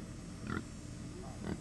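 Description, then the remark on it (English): Pigs at Comfort Farms in Dublin grunt twice in short, low bursts about a second apart, over a steady background hum of the farm. “Comfort Farms is ripe with everything from okra and tomatoes to chickens and pigs.”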